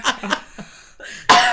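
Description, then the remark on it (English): A few short coughs in quick succession, the first two strongest, followed by a brief pause and then a sudden louder, sustained burst of sound. “Can I cough? Go ahead and cough.”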